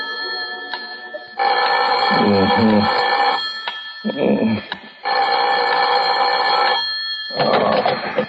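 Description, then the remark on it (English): A telephone bell rings loudly in repeated jangling bursts, about four rings separated by short pauses, with no voices. The phone is ringing in a warden's office. “You better phone the warden to make sure, though, Governor.”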